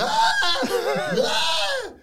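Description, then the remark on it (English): A person screams in a strained, high-pitched voice that wavers and bends in pitch, loud for about two seconds before cutting off. “Screaming again.”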